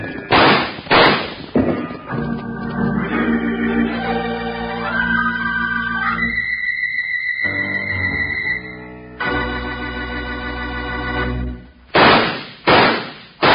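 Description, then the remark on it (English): Three loud, sharp gunshots ring out, framing a stretch of swelling orchestral music, with the blasts coming at the opening and again near the end. “Wranglers, those three gunshots are just to remind you that Kellogg's new cutout masks are in 3D.”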